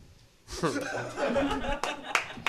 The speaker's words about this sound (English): You make sure the single clap goes on to the podcast.